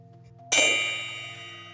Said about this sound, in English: Before we get started, I'm going to go ahead and set our space by ringing our bell.